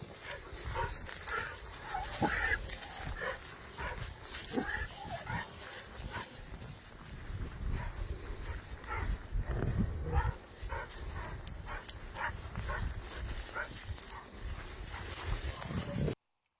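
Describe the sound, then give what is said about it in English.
A dog being walked by a man barks repeatedly in sharp, uneven bursts, loud, over a steady rough background noise that continues for the whole stretch. “That coyote ends up following that man down the hill a little bit. But so I do want to reiterate that the barking you heard”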